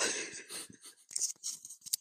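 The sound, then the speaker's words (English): A person gives an exaggerated, breathy mock gasp, a sharp rush of air that trails into a few short, hissy breaths and huffs, with no speech. “I'd be aghast. Aghast. Gasp.”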